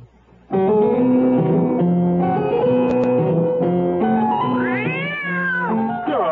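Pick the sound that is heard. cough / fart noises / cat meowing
cat meowing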